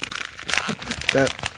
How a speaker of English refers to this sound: I'm actually opening a bag of toilet paper because I'm about to shit on everybody that hates on Stafford right now.